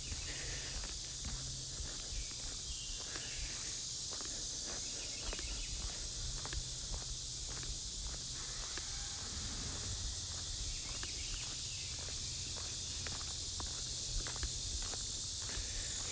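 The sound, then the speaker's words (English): Steady footsteps crunch along at an even walking pace past houses on trash day in York County, Central Pennsylvania, each step a soft scuffing thud, over a constant high-pitched insect drone and a low background rumble. No one speaks. “Trash day here, walking by some houses.”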